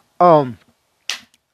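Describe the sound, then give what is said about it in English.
A single person coughs twice: first a loud, throaty, voiced hack that drops in pitch, then after a short pause a quicker, breathier cough. No talking accompanies them. “I knew after I said the word narcissistic, I was gonna cough.”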